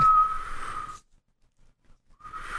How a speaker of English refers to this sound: I learned how to whistle